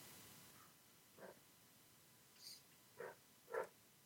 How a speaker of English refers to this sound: What's that dog? Is the dog okay? He's just mad about something. Who knows? Always. That dog's always mad about something, man.